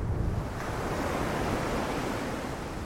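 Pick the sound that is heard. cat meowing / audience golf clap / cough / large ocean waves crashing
large ocean waves crashing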